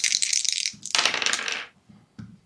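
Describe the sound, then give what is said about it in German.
Dice clatter loudly, shaken and tumbling across a hard surface in a busy rattling burst, then settling with a single small click. “Und wir haben noch einen zweiten zu erwürfeln.”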